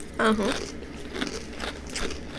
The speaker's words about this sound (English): Let me know what you think of the Super Sprod snack chips. These are potato snack with assorted spices. They're very crunchy. They're definitely, dehydrated and dried.